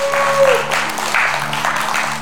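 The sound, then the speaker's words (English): An audience at a church service applauds together, a steady wash of many hands clapping with a faint tonal hum beneath and no speech, welcoming a woman as she comes up to lead worship. “So give her a good hand clap as she comes up.”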